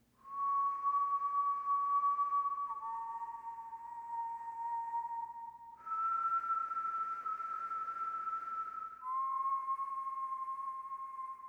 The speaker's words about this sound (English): From somewhere above them rose a sound of weird, sweet whistling.